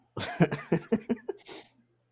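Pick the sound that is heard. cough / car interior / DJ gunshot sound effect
cough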